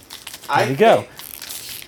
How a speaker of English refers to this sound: So while we're here, let me hear a little rustling in the package. I'm going to take a bite of beef jerky, and let's see if I get a nice energy boost, some mania going, if you will.